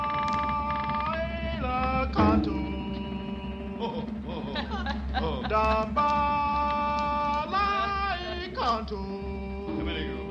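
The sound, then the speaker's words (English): A door at the top of a stairway creaks as it is slowly and cautiously opened, its hinges groaning in long, wavering squeals that bend up and down in pitch over several seconds, fairly loud, with no voices. “Cautiously, I opened the door and slipped in.”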